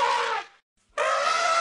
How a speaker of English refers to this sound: What about, what is this elephant saying now? We went to London Zoo and recorded the elephants.